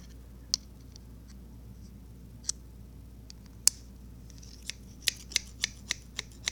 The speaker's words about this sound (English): Here's a pair of scissors. Can you hear that?